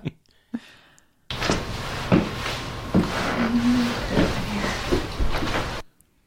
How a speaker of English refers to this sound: It is, I mean, obviously I had to crank it up, so the footsteps may be a bit loud, but it's like, come here.